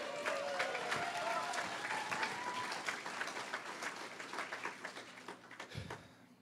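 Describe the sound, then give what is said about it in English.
A crowd applauds a speaker steadily, dense clapping at moderate loudness, with faint voices mixed in, then tapering off toward the end. “Can we just give another round of applause”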